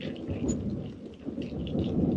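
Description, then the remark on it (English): Heavy rain pours steadily in a dense, hissing wash, with a deep rumble of thunder rolling underneath throughout. No voices are heard. “Yep, Isaac walks out a few paces and looks left, right, forward, just trying to see if you can see anything in the heavy rain.”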